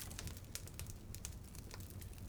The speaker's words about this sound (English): You hear the hiss and the crackle of a log snap and tumble into the bed of coals.